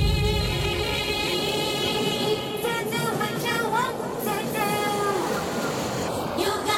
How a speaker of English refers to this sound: this train going by.